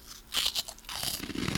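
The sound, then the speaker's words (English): Wet mouth sounds of someone slurping an oyster, with a few quick smacking bursts followed by a longer noisy suck, quiet, with no talking. “Slurping on the oyster.”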